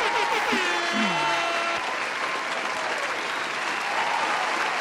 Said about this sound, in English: Happy Thanksgiving, everybody. We here. Come on now, happy Thanksgiving. Hey. Round of applause for Thanksgiving, man.